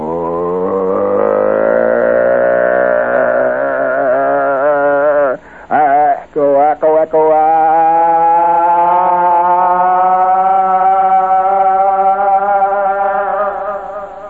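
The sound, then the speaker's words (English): A loud airplane engine revs steadily upward to full throttle as the plane begins to move fast down a runway, its droning pitch climbing for several seconds and then holding strong, with a few brief stutters midway. “She is at full throttle, and the plane begins to move fast down that runway, and you get the feel of it.”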